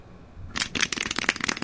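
After a brief moment of quiet, a quick flurry of crisp, sharp claps breaks out, dense and slightly irregular like a short round of applause, with no voices.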